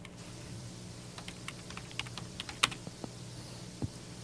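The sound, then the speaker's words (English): Quick, irregular clicks of typing on a computer keyboard, a scattered run of typing over a low steady hum, with one sharper, louder keystroke standing out midway. “It just depends on how close that mic gets to that keyboard.”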